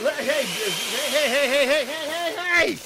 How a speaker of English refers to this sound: put it in the blender along with some cucumber. Chop that in there. Cucumber. All right, a little onion, a little garlic. Put that in there, put it in the blender.